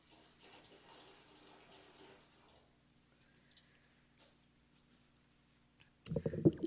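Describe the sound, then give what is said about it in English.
Water is poured into a vessel in a ceremony, a soft trickle for a couple of seconds, then near quiet, before a sudden louder splash and gurgle at the very end. “And with this water, I bring my joy and gratitude for the Rocky Mountains that we get to see every day, the glistening light and the great nurturance.”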